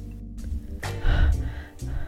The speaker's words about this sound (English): Breathing heavily.